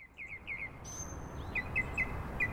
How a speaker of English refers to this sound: Birds love a wetland, otherwise known as a bog, a marsh, sometimes a swamp, a fen.